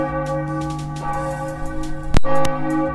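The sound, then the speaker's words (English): A church bell tolls with a deep, ringing tone, its long sustained hum filling the space before a fresh strike lands near the end and rings on. “Can we get some bells for respect?”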